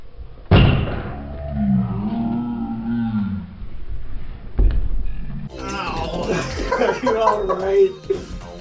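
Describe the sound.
A folding chair strikes a person in the back of the head with a loud, sharp thump. A low, drawn-out groan follows, then another heavy thud a few seconds later, and then overlapping voices.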